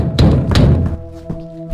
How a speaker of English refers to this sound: According to the police report, the officers knocked, announced themselves, and then entered through the front door.